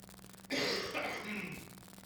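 A single loud throat clearing with a raspy cough-like burst, lasting about a second before trailing off into quiet with a faint low hum.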